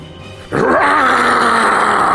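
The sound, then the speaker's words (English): A voice imitates a dragon's fiery breath weapon, a huge fireball: after a brief quiet moment, a sudden loud, rasping, breathy roar bursts out and holds steady, growling and hissing for nearly two seconds. “So I inhale, all the anger, venom, all comes out in one huge fireball towards the three of them.”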